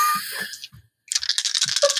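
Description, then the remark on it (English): Four dice rattle and clack together in cupped hands: a first burst of clicks, a brief pause, then a denser, louder stretch of shaking. “I don't like the amount of dice you're holding.”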